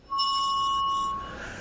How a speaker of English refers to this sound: And please make sure to like, comment, subscribe, and ring that notification bell.